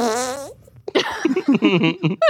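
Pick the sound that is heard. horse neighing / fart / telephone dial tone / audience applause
fart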